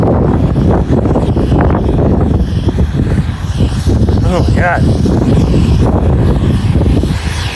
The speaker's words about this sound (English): It's windy out here. It's snowing. It's a snow and rain.